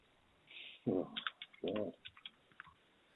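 Quiet, irregular clicking of keys as someone types on a keyboard Googling the population of Echuca for a radio quiz question, a scattered run of soft taps, with two short low hums or coos breaking in partway through.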